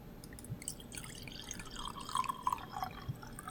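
Sake pours into a glass from a freshly opened bottle with a soft, uneven trickle and small dripping splashes, fairly quiet, lasting a few seconds with no one speaking.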